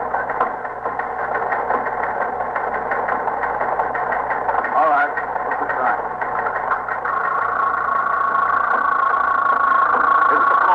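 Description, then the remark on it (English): A teletype machine in a police precinct clatters steadily in a fast, mechanical rattle that runs without pause, fairly loud, with a faint hum and some indistinct background voices. “Sergeant, see if that's the promotions on the teletype, will you?”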